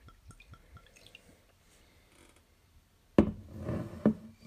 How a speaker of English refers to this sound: I'm going to pour a little bit into this glass. Just a little sip.